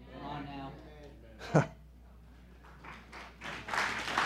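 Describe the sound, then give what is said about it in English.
During a sermon, a man speaks briefly, urging the audience to clap, then the audience starts clapping, scattered at first and swelling into louder, steady applause toward the end. “Clap if it don't kill you.”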